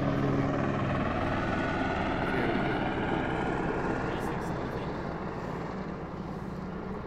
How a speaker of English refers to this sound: The helicopter's flying right over.